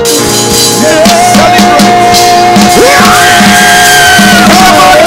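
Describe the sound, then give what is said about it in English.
A loud church audience erupts in praise of God in the morning, many voices screaming, shouting and whooping together in a dense, sustained roar with individual yells rising above the crowd. “So this morning, in praise of God, I want you to scream and shout and jump.”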